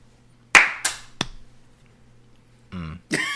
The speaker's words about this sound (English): Yes, we commend that young black man. We give him a hand clap.